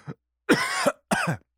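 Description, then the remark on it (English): A person coughs: a brief catch, then two strong, raspy coughs separated by a short pause, with no talking. “I hope that's not a COVID cough.”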